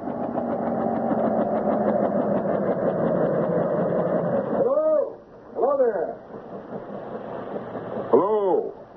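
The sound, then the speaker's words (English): A big helicopter landing just after 5 o'clock: a loud, steady mechanical drone with a harmonic whine for about four seconds, then the engine noise drops back as brief voices rise over it. “Oh, that's some big helicopter.”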